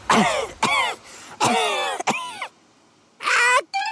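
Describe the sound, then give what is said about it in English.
A run of about five loud, voiced sneezes in quick bursts, each a harsh rush of breath with a wavering, falling pitch, followed by a short pause and one or two more. “Bless you!”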